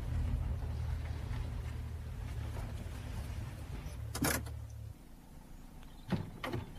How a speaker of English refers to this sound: Well, that's odd. He's put the car away and left the engine running.